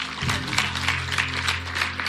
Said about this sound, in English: Clap your hands for God.